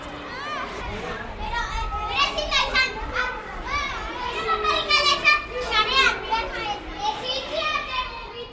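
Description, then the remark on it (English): Children playing in the streets of Donostia (San Sebastián): a steady jumble of high, overlapping young voices calling, chattering and squealing for the whole stretch, with a low rumble underneath and no single voice standing out. “Everywhere I walk, I am struck by the mostly unimpeded freedom children and dogs experience in the streets of Donostia.”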